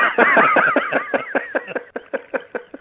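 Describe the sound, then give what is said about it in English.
A stuck duck call is blown: a loud, wavering squeal that breaks into a rapid run of about ten sharp, evenly spaced quacks, gradually shortening and fading slightly, with no voices. “That's a stuck duck call.”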